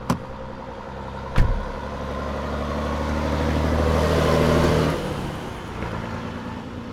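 A truck engine rumbles after two sharp thumps, then revs and builds steadily as it drives off, the loud roar dropping away abruptly near the end with no one speaking.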